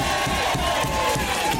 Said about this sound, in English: Round of applause.